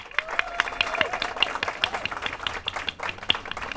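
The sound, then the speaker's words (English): An audience at a city council meeting in Antioch applauds steadily for a cohort of young adults finishing a city youth program, with many overlapping hand claps forming a dense, crackling wash that stays fairly even throughout. “Please, another round of applause for our amazing Cohort 1 of the MAP program.”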